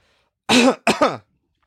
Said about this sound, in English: He immediately, like, coughed and said... No, dude, you have to. You have to. It was awful. I had to cough.